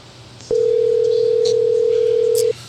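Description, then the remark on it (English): A single steady telephone ring tone sounds for about two seconds, loud, as a call rings through on the line with no one speaking. “I bet you somebody answers the phone.”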